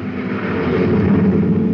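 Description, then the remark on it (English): A loud, steady engine roar from a maintenance truck speeding past a car on the road, swelling slightly as it rushes by, with dense low rumble and hiss throughout and no voices. “Did you see him whiz past us? It's a maintenance truck.”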